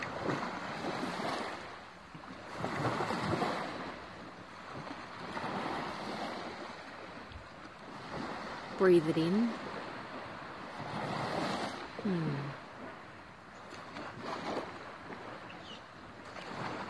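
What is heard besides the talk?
ocean waves washing ashore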